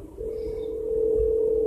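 A steady electronic phone tone hums without a break, the ringback heard while an outgoing call waits to be answered, clear and unaccompanied by any voices.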